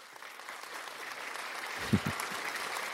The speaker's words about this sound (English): And a little, hopefully you guys can hear this little clap, clap.